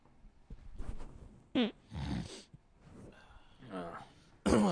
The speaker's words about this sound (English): Inconvenient timing that I made a nose snorting, clearing my throat voice right as you ripped ass. So it sounds like, that was directly in my face.